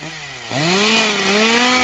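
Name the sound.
chainsaw starting up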